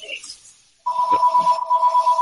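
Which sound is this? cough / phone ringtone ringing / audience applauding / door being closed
phone ringtone ringing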